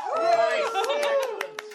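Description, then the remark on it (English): A few voices whoop and cheer in an imitation of a roaring crowd, with scattered sharp hand claps punctuating the steady hollering. “The roar of the crowd.”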